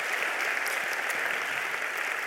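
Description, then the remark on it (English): Steady, dense audience applause for visiting guests, given one more time, fills the whole stretch, a continuous crackle of many hands clapping at an even loudness, with no voices standing out. “And so would you just give them a round of applause one more time?”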